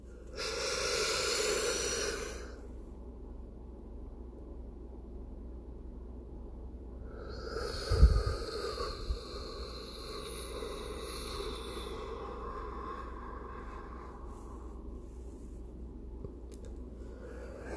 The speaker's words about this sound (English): That's it. I want you to continue practicing that kind of breathing as we speak.